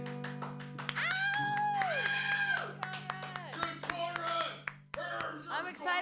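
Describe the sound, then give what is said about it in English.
An audience claps as a musician comes up on stage to play music, a steady scatter of hand claps mixed with whoops and cheering voices rising and falling over a low, continuous hum, fairly loud throughout. “Clapping is fine.”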